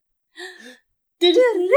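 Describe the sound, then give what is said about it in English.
A dog whimpers in two short, high whines: a softer one first, then a louder, longer one whose pitch wavers and rises at the end. No one speaks. “All right, the dog was joining in.”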